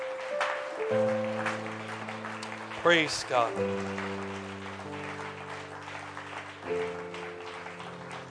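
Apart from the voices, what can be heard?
audience clapping hands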